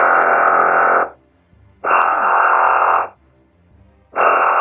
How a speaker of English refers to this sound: Oh, it's an alarm. Did it say something? Yeah, it was speaking in clockwork. What does it say? It says, state your business. Oh. But it was very droning and very dumb-sounding for clockwork.